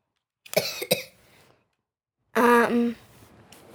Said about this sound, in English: Well, you're getting a cough. I've got a cough.